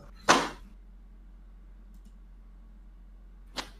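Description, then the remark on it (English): Construction noise: a loud, sharp bang followed a few seconds later by a softer knock, with a low steady hum running underneath and no voices. “Sound like construction work over there.”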